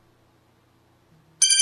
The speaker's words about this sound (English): It's a great alarm sound. Yeah? Yeah. Oh, it sounds very official. I like it.